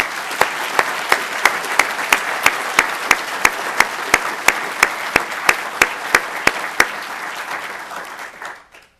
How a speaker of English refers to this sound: Just curious, how many World War II veterans do we have in the audience tonight? I think we all owe you a round of applause.